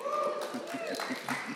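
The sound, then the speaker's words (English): A small crowd at a morning community talk cheers and claps for a local businessman introduced as the speaker, with a rising whoop riding over a steady patter of quick, fairly soft hand claps. “That's why we're cheering.”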